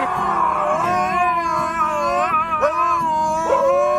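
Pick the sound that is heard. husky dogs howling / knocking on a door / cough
husky dogs howling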